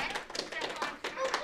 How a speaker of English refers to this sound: Yeah, we can clap to that. That was really good.